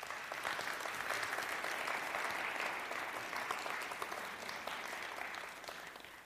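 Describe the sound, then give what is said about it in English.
Sustained applause from a church audience, with dense, crackling claps filling the whole stretch at a steady level, tapering slightly near the end. No one speaks over it. “I was going to applaud for you.”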